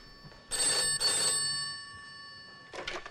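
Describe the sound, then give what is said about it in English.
An old-style telephone bell rings in a posh house in two quick back-to-back bursts, falls silent briefly, then starts ringing again; the ring is loud and metallic, with no voices. “A phone rings, and this sort of, you know, middle-aged, he's getting on a bit, Vietnamese dude walks to the phone.”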